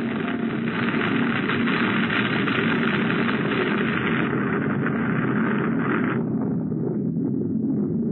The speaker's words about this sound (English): Get out of the car, quick! An avalanche!